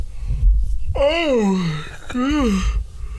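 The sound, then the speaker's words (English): A long, loud yawn with a voiced, sliding pitch that rises then falls, followed by a shorter second yawning groan, over low rumbling background noise. “I think that yawn is a sign to end this episode of the podcast.”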